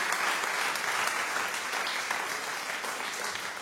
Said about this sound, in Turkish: Buraya bir alkış efekti rica ediyorum abi. Koyacağım. Koydum şu an.